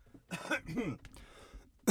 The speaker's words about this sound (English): Sorry, that's my cough button. Unfortunately, it produces a cough instead of muting the situation.